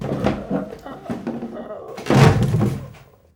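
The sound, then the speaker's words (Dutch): A heavy knockout blow from a club lands with a loud, dull thud, preceded by a few softer thumping impacts, with muffled vocal sounds beneath before everything cuts to silence. “Ik hoor de klap, maar ik voel niks.”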